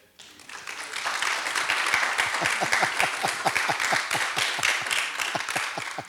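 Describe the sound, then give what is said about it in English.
An audience bursts into applause, a dense wash of many hands clapping, with a steady rhythmic clap pattern emerging partway through and holding until the end. “There's the clap.”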